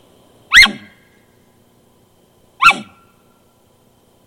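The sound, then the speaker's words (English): Two sharp, loud elk barks, demonstrated on an elk call, each a short harsh burst with a downward-sweeping tone, separated by about two seconds of quiet, with the start of a third at the very end. “Oh, one more sound that elk make that obviously we don't like hearing out there in the woods as an elk hunter is the bark.”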